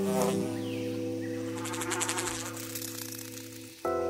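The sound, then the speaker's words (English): A tiny Australian native bee buzzes in a steady, droning hum that wavers slightly and jumps in pitch near the end, with no talking. “You're a special, teeny tiny Australian native bee.”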